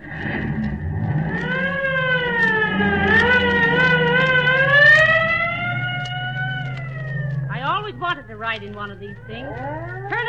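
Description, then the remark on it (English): A police squad car's wailing siren rises and falls steadily over a low engine rumble as the car drives off, sustained for several seconds, then breaks into faster, choppier yelps near the end. “Here's the squad car here. Get in. All right, buddy, let her go.”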